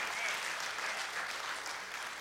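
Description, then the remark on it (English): A church audience applauds 43 salvations from the past year, steady applause in a dense, even wash of many hands clapping at a constant loudness with no voices standing out. “And if you don't clap now, I'm going to be really upset, because that is amazing.”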